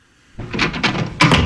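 A door being opened, with a series of short rattling, clattering bursts followed by a louder clunk near the end. No one speaks.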